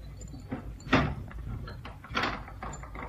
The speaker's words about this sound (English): Lock the door again, will you